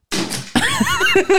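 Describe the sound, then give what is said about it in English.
Someone slowly opening a door to avoid making noise knocks over a mop: a noisy, hissing burst followed by warbling, rising and falling vocal tones, loud and lasting just over a second. “Slowly opening the door so he didn't make noise and then knocked a whole ass mop.”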